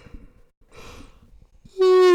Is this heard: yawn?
yes